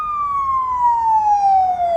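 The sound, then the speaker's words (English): A loud ambulance siren wails steadily, its tone gliding slowly downward over a faint low rumble of traffic, with no voices. “Thankfully, Spider-Man tags them with a tracer and follows them, seeing Havoc restrained and unloaded from an ambulance.”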